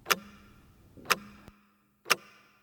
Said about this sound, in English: That is a clock ticking. That sound represents the relentlessness of life. It keeps marching on, not slowing down for anyone.